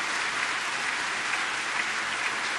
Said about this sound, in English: Would you guys give them a round of applause for the service that they do for our church?